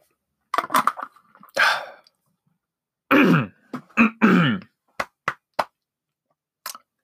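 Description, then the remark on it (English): A run of repeated throat clearing of a dry throat: a few harsh, rasping bursts early on, a longer gravelly stretch in the middle, then several short sharp clicks and a final small rasp, with no talking. “Come on, throat. Stop being so dry.”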